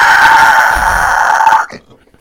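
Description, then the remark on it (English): A man's voice, a player voicing the beast Craig as it whirls around on an attacker in a game, lets out a loud, sustained monstrous scream lasting over a second, harsh and strained, then cuts off abruptly into quiet. A human voice imitating a beast's shriek. “And at the last minute, Craig whirls and screams at you.”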